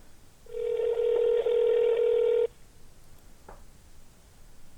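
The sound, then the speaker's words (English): A single long ringback tone from an outgoing phone call, a steady buzzing pitch lasting about two seconds, followed by a quiet line and a faint click, with nobody picking up. “Yeah, it doesn't look like she's going to answer, dog.”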